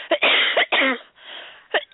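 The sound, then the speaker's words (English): A person with a cold coughs several times in quick bursts, fairly loud, with harsh raspy breaths between, ending with a brief softer cough. “I'm coughing in you guys' ears.”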